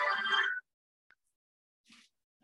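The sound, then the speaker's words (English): A phone ringtone for an incoming call plays a short, bright melodic burst for about half a second, then stops, leaving near silence broken only by a couple of faint, brief blips. “then Sparkling Hill showed up on my phone”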